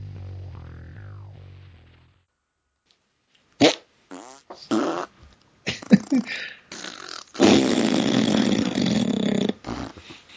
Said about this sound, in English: Fart noise.